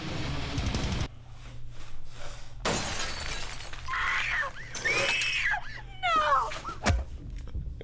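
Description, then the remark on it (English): Shrill, high-pitched screams in a girl's voice, presented as live from Michael Jackson's bedroom, rise and fall in a few wavering bursts, mixed with loud crashing and shattering noises and a low steady hum underneath. “screaming his life”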